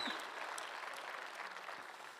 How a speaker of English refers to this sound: You're excited. You can clap. Everybody just clap really quick.